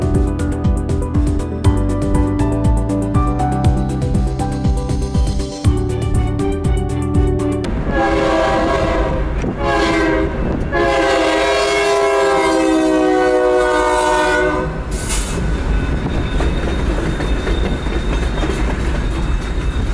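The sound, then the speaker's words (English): A train rumbles past, wheels clattering over the rails, as its horn sounds in long, loud blasts that swell and fade over the steady roar, heard on a hot day while waiting for the train in a car with no top. “No top on the car, waiting for this train is hot.”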